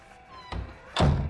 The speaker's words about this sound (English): Close the door, please.